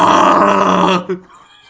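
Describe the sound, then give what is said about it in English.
A voice imitates straining on the toilet: a loud, gravelly grunt held for about a second, then a brief, softer grunt that quickly fades. “Is that the voice you'll make when you do a shit or not?”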